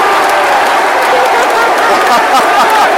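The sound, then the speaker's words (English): A big stadium crowd of Millwall fans roars and applauds Tom Elliott's headed goal that puts the Lions 1-0 up, a loud, continuous wash of clapping and cheering, with a voice faintly audible beneath the noise. “Elliott takes the applause.”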